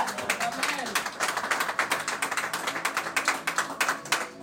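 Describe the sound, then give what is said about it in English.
An audience clapping their hands in praise of God: a dense, irregular patter of sharp claps that stays loud and steady for several seconds, with some voices faintly mixed in underneath. “Clap your hands and give God praise, somebody.”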